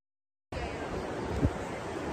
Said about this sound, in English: I'm in Iceland, and this is the waterfall that I was just going to for the talking Schiff that we just did. Truly unbelievable. Unbelievable.